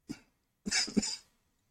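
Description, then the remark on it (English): A short single cough followed by a rougher double cough about half a second later, fairly loud, with no talking. “Sorry, my cough is still there.”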